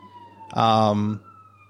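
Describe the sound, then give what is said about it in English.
Emergency vehicle sirens wail steadily, broken by a loud, blaring half-second horn-like blast before the steady siren tone carries on. “there's some sirens in the background and they're not coming for me.”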